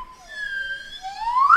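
A single sustained whistle tone, bright and fairly loud, holding steady before sliding upward in pitch at the end. No talking.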